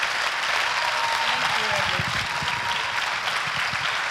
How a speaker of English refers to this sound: Ladies and gentlemen, can I ask us to be upstanding and welcome her with a clap offering?